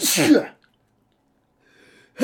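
A single loud sneeze bursts out at the start, followed by near silence with faint breathy noise before another sound starts at the very end.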